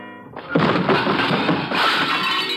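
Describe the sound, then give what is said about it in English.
A loaded serving cart of dishes, shoved across the floor, slams into a wall with a loud crash, then a dense, sustained clatter of shattering crockery and rattling pieces, with no voices. “Then my elbow bunched an object beside me, a serving cart loaded with dishes. I push it a few inches. The wheels don't make any noise. I give it a shove towards the wall and wait.”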